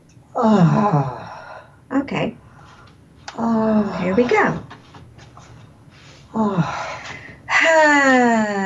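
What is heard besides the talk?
deep guided breathing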